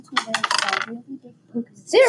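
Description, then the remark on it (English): A small ten-sided die, rolled for damage, clatters across a hard tabletop in a quick burst of rapid clicks and rattles, then settles; a voice starts speaking just at the end. “Because it's a 10-sided dice.”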